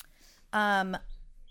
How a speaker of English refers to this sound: put your bird away. He's loud and annoying.